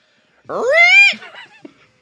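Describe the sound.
A person imitates a pig with one loud, rising, strained squeal lasting about half a second, then trails off into a few short, softer grunting squeaks.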